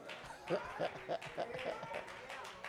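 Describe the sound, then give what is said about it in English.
A handful of people clap sparsely, a thin, uneven patter of individual claps rather than full applause, with a low murmur of voices underneath. “Only a few people clapped.”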